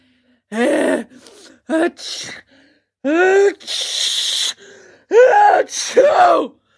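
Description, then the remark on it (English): A voice imitates three loud, exaggerated sneezes by Fire Eater in Pinocchio in quick succession, each a sharp gasping inhale followed by a breathy, hissing burst. “Three more sneezes sounded louder than ever.”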